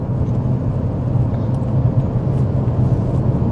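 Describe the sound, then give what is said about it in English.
A car heads off on a track, its engine rumbling steadily, a constant low drone with road noise and no noticeable rise or fade, and no voices over it. “And he's just heading off.”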